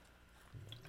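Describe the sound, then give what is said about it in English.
A quick, quiet sip of water: a soft wet slurp and faint swallowing sounds, with no talking. “Guys, let me just take a sip of my water.”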